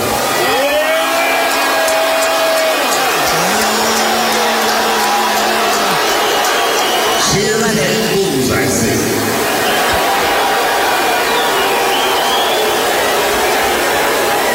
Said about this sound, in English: That's what it sounds like. And that's what it's supposed to sound like, because he's one of the worst. Okay. Then he like gets on Twitter and says, technically it was 90% cheers and 10% boos, but still that's a lot of boos.